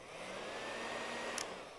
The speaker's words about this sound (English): This blow dryer will never reach its potential if it is not connected to the source.